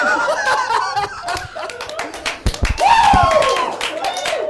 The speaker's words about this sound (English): First applause break in the podcast. The other one's been edited out.